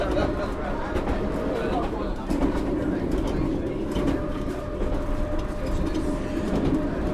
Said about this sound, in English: If I remember correctly, the maximum speed on this line is 45 miles an hour. However, with a slightly bumpy track and these converted carriages, it feels as though we're travelling an awful lot faster than 45 miles an hour.